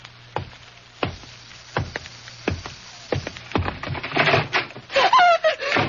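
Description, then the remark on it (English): Steady footsteps thud, and then a door creaks open with a squeaky hinge and knocks against wood as someone comes in, fairly loud, with no voices. “Somebody's coming in”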